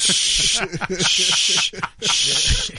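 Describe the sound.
A voice imitates an exterminator's spray with three long, bright hissing bursts separated by short pauses, while other people keep talking underneath.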